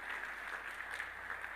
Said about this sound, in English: You're clapping in the second house right now.